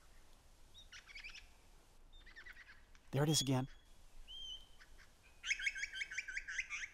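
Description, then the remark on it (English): A lyrebird mimics a pied butcherbird's song, giving several clear, melodious phrases in short bursts, with a brief spoken voice cutting in midway and a richer, louder phrase at the end. “Imitated again perfectly by this lyrebird. There, one of the many melodious liquid song phrases of the pied butcher bird.”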